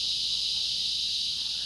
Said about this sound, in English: Oh, ooh, the cicadas. Ooh, we're being hit. They're listen, coming for you. Listen.